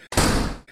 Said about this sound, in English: Shall we, close the door and get comfortable?